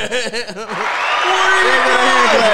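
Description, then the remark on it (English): A played sound effect: rhythmic laughter opens, then a loud, steady wash of crowd applause takes over and runs to the end, with a few whoops over the clapping. “I forgot which one was the hand clap.”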